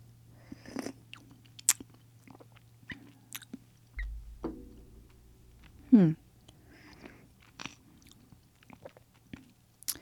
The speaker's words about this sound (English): I'm going to just have a little sip of this to see what this tastes like.